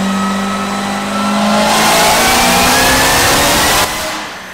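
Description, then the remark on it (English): A powerful car engine revs hard during a short dyno pull, climbing steadily in pitch and roaring loudly for a few seconds before cutting off abruptly near the end, with no voices over it. “He did a short pull. That's right here.”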